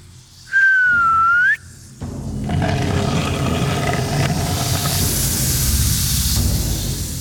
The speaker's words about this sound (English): … whistled softly.